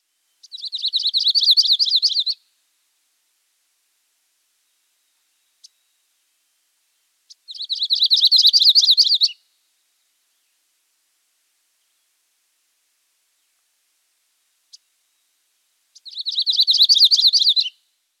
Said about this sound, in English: So one more time, the variations on the yellow-rumped warbler song. The first two are Audubon and the third Myrtle.